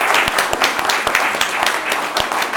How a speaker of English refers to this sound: And I want to give an applause to all of the panelists.